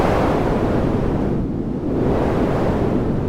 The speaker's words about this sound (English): As you shut the door, you see a wave the size you have never seen before coming from the lake, as if it is almost tsunami-sized. A crushing wave of pain and death.